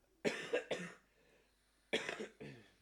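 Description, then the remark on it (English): A loud fit of coughing: three harsh, rapid coughs, a brief pause, then two more forceful coughs, with no talking. “It was a really loud cough.”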